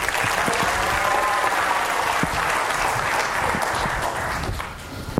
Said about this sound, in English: Thank you, sir. Please give him a warm applause.